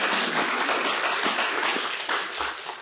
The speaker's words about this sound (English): Yeah, you can clap.